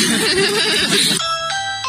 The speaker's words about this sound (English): Got your DoorDash. Got a Ring doorbell, too.